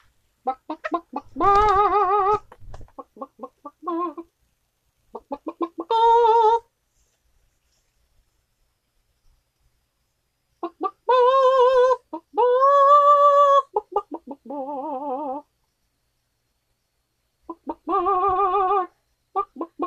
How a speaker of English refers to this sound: gonna try to do a duet with the chicky, my little chicken, my little rooster.